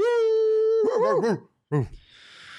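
A dog lets out a long, steady howl that breaks into wavering, whiny yelps, then a short whimper after a pause, with a faint hiss trailing at the end.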